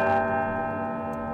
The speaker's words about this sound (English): the historic bells of Albany City Hall.